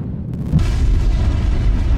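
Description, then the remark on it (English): A deep rumble swells into a massive booming explosion that keeps roaring with heavy low-end thunder, depicting the asteroid that crashed into Earth and killed off the dinosaurs 66 million years ago, with no voices present. “An asteroid came rocking out of the sky and crashed into Earth.”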